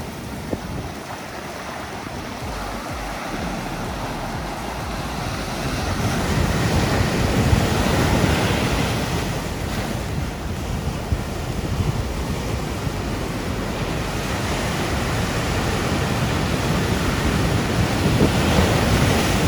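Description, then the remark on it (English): Steady roar of ocean surf as massive waves roll onto a sandy beach on Oahu's North Shore, with a broad rushing wash that swells louder midway and stays continuous, plus some wind noise buffeting the microphone. “Miles of sandy beach and massive waves roll in and host various competitions, including the Triple Crown and the Eddy when right.”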